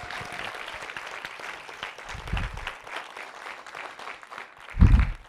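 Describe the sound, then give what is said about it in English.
An audience applauds steadily, a dense wash of many hands clapping at moderate volume, with a couple of brief low thuds or bursts mixed in, swelling slightly toward the end, at a morning church gathering, for a member who shared about serving on the mission field. “Thank you for sharing with us this morning. Big hand.”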